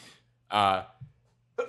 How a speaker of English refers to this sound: Bless you.